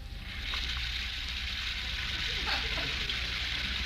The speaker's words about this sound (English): While upstairs, we hear the sound of the shower.